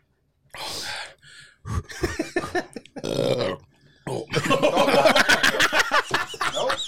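A loud burp followed by a string of guttural throat noises and coughing sounds, rough and voiced, over several seconds with short pauses between bursts.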